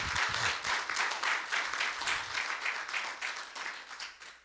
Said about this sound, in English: Can somebody give God a round of applause?